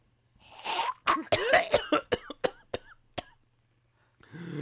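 A person coughs and clears their throat in a rapid series of harsh, gagging hacks that taper into sharper single coughs, followed by a short breathy rasp. Close-up, with no talking.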